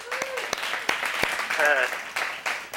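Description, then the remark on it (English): A crowd applauds steadily for a few seconds, a dense wash of clapping with some sharper claps standing out, mixed with a few cheers and a brief whistle-like call. “Hey, we need another audience applause.”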